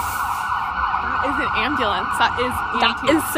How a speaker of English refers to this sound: That is some sirens.